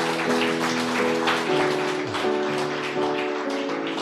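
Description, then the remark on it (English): An audience at the end of a church service claps loudly and steadily for several seconds as a clap offering to the Lord, a dense crackling wash of many hands, with sustained musical tones or humming underneath. “So before we end, let's give the Lord the loudest clap offering that we can give him.”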